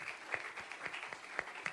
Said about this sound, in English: Let's clap and celebrate the Holy Ghost.